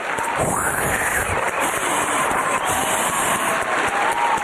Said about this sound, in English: The crowd goes wild.